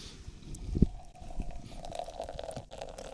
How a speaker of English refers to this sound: Oh, man, that smells great. Opening that can.